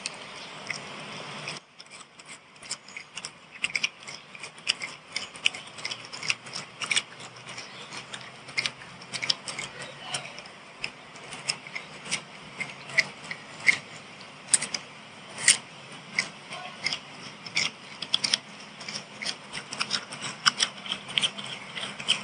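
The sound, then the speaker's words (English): Kofi, a pet, crunches its food steadily while eating, crisp sharp bites and crackles coming in quick irregular bursts over a soft hiss, with no talking throughout. “Now it is time to hear Kofi get his crunch on”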